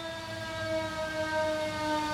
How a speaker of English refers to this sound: Let's wait for this siren to go by.